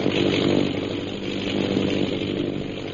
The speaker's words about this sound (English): Several hours later, the sound of an airplane circling overhead brings Peter Hawkins and Shanghai Lil to the window of their cell.